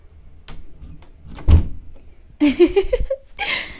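A door is pushed shut with one solid, low thump, followed by a burst of shuffling and squeaky handling noise, then a final brief rustle.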